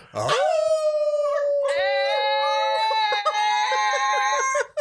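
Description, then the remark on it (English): A group of people howl together in imitation of a wolf pack: one long howl opens, then several voices join in sustained, overlapping wails, loud, filling the whole stretch. “let's see if we can go out on one big group howl like a wolf pack.”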